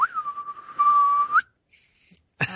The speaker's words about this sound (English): We have the whistle, which of course we can't demonstrate in the book. Right. But maybe I could demonstrate it right now.